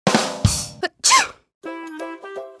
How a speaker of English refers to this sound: When we sneeze, it's because our nose is trying to get rid of the germs or dust that have gotten into our nose. When someone sneezes, you can say, Gesundheit.